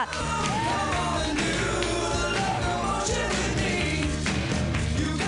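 A comedy club audience claps and cheers loudly and steadily for several seconds, with scattered whoops and shouts rising over dense, continuous applause.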